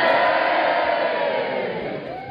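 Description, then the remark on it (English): A loud crowd cheers in a dense, steady roar of many voices, with whoops rising out of it, easing off only slightly over a couple of seconds. No one speaks. “I feel like I deserved that cheer.”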